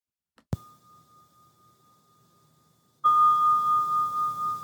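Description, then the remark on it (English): A bell is struck once and rings on with a clear, sustained tone; partway through, the ringing swells louder amid a burst of rough background noise. No one speaks. “Let's give another sound of the bell here while we're sharing space with one another.”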